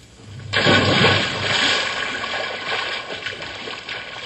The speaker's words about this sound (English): when we get to the water, all we have to do is just jump in and cool off